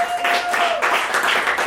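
A crowd applauds with dense, continuous clapping that stays loud and steady throughout, joined early on by a thin sustained whistle-like tone that fades out partway.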